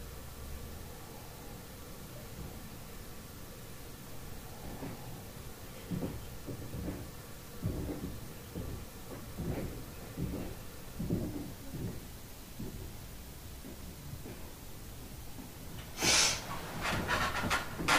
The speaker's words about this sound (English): Yeah, that's you certainly hear footsteps walking around. Yeah, and they sound heavy footsteps too. Like there's no way you wouldn't, and it's impossible because the whole place is carpeted upstairs. Even outside of the room, that's carpeted.